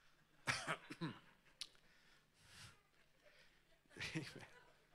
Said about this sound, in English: If you can't give me a Pentecostal amen, then give me a Baptist nod. If you can't give me a Baptist nod, then you can just give me a Methodist cough.